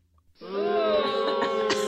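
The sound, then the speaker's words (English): Someone vocally imitates a motorcycle revving: after a brief quiet moment, one loud, sustained, buzzy drone kicks in and holds at a fairly steady pitch, rising slightly, with no words spoken. “That's you on the motorcycle.”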